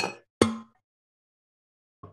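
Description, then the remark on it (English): Glasses clink together in a toast: a short knock, then a louder ringing tap that fades over a moment, and a faint third touch near the end. The clinks stand alone, with no talking. “Before we go any further, we have to cheers.”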